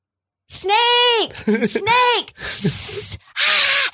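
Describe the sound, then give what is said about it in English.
Loud, sharp snake-like hisses alternate with drawn-out, wailing vocal cries, four close bursts in quick succession, like a voice acting out a hissing snake. “Snake!”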